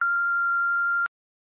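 A single steady telephone menu beep, the short tone after which callers can dial a staff extension: a pure mid-high tone held for about a second, cut off by a sharp click and followed by silence.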